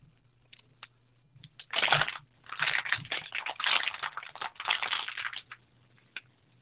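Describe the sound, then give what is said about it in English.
A plastic water bottle is squeezed and crunched in several loud bursts of crackling and crinkling, with brief pauses between the handfuls of noise. “I heard that crunch, crunch, crunch, rattle, crunch, crinkle, crinkle, crinkle, crinkle, crunch. They need to make plaster a lot quieter. Water bottle.”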